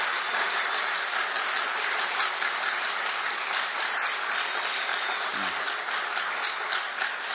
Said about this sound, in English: Now I got one more. I want you to give Jesus the best hand clap you've ever given.